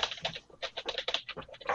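Rapid, uneven clicking of keys on a computer keyboard, close by and fairly quiet, with short bursts of strokes and brief pauses between them.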